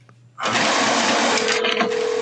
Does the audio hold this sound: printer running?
yes